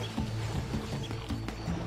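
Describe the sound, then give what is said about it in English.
A young tigress growls a low, rumbling warning at a young bull elephant, the growl pulsing steadily for a couple of seconds, with faint rustling and clicks in the background and no talking. “but she still gave him a warning just in case.”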